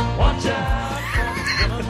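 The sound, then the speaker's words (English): A horse neighs loudly in a movie scene, a long wavering whinny with rising and falling pitch that fills the whole two seconds over a low rumbling background. “Okay, cut to the horse.”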